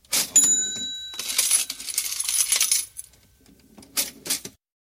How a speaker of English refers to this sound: Maybe we change it and make it like a cash register is going, because he always makes money for his partners, even though he is in poor health.